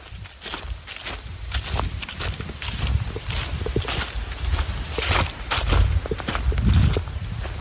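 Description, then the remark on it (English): Steady footsteps crunch through dry leaves on a gravel path in thick forest in the wilderness near the Hickory Ridge Fire Tower, Indiana, each step a gritty, rustling crackle in an uneven walking rhythm, with no talking over it. “We can hear the sound of leaves crunching beneath our feet.”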